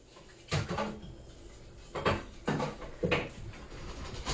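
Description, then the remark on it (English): Dishes clatter and clink as someone washes the dishes as a chore in a kitchen, with four separate knocks of crockery and pans spread over a few seconds, against quiet room noise; no one speaks. “You can hear Ellie is doing her chore of the dishes right now.”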